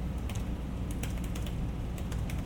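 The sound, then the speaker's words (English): Quiet, rapid clicking of keys being typed on a laptop keyboard, a steady run of soft taps over a low background hum, with no voices. “So guys, before we go too far, I wanted to go back to this keyboard discussion. This is the way the book sounds.”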